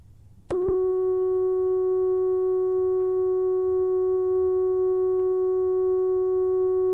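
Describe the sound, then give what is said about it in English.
A steady sine-wave tone from a synthesizer oscillator, patched directly into a studio mixer, switches on with a brief click and holds at a constant pitch, smooth and unwavering, sustained alone for several seconds without any talking. “We're listening to a sine wave, S-I-N-E, so-called because its pattern follows the sine function, familiar to us from trigonometry.”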